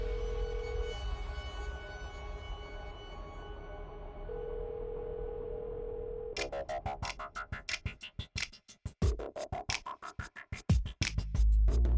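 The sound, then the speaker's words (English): A steady telephone dial tone hums for several seconds, then a rapid run of sharp clicks and rattles follows as a man dials a lawyer's number on the handset. No one speaks. “Gilbert picked up the phone and dialed the number for his lawyer”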